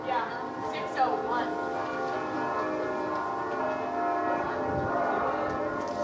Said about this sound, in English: Yeah, 6:01. Let's everyone take a moment to reflect as the St. Mary's bells ring. How long do they go?